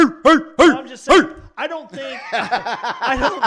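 Several dogs bark loudly and close by, a few sharp separate barks at first, then a rapid, overlapping flurry of barking from more than one dog.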